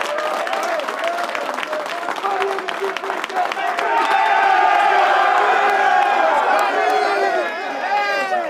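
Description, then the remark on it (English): A football team claps and cheers loudly for its offensive line, with whoops and shouted voices rising over steady applause for several seconds. “Give it up for those guys.”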